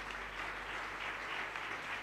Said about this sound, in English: Church, clap your two hands for Jesus.